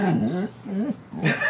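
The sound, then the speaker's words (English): A dog makes strange, warbling vocal noises, three wavering groan-like bursts rising and falling in pitch, loud and clear with no talking over them. “slowly morphing into a sea creature, it sounds like.”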